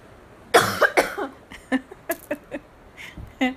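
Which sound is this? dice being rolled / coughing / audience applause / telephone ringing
coughing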